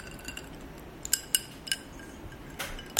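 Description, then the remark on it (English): Five or so bright, ringing clinks of glass and bottles knocking together, spaced irregularly, over a quiet low hum with no voices, as bottles of vermouth and Campari are handled while mixing a Negroni cocktail in equal portions over ice. “So take out our vermouth. This is the vermouth. Yeah, we have the Campari.”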